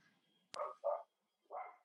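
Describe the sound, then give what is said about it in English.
A dog barks three times in quick, uneven succession, short sharp woofs with a brief pause before the last one, and no talking over them. “Sorry, dog just going back.”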